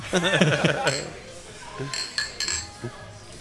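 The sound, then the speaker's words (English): A few bright glass clinks ring out in a quick cluster as glasses of alcohol are touched together in a toast on a radio broadcast, following a brief stretch of voices at the start. “Cheers.”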